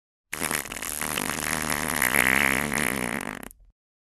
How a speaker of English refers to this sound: Okay, so this is the world's funniest fart according to science.